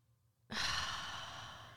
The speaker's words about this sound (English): Let me breathe out. I feel it down to my toes.